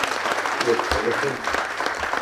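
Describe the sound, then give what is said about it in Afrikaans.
Steady audience applause for young people, a dense wash of many hands clapping at an even loudness for a couple of seconds, with faint voices mixed in underneath. “Ek ons vir jong mense net 'n groot hande klapje vir hulle om geleef te bydra.”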